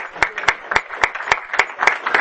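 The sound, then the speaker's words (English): An audience breaks into applause again for Steve, a dense wash of many hands clapping with a few sharper claps standing out in a steady, even rhythm throughout. “Let's give it up again for Steve, because he walked out when we started clapping for him earlier.”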